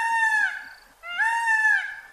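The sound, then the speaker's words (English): A peacock in Miami lets out two loud, shrill, nasal cries, each under a second long with a brief pause between. The cries are piercing and harmonically rich, with a slight rise and fall in pitch. “They're beautiful, but they can be bullies, roaming through your neighborhood like the sharks and the jets, occupying your roof with a shrill cry that sounds like a cat meowing into a bullhorn.”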